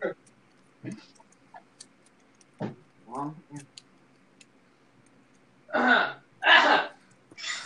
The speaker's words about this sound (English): Cough. That's what it sounds like when you have coronavirus.